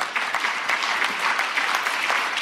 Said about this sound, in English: And by the way, when I said we could not have done it without Families USA and without you, that is an applause line for you.